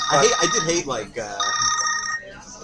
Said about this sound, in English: Getting a phone call.